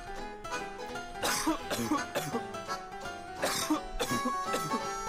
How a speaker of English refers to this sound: Why does it sound like me coughing? Man, sounds like someone has like smoking cough.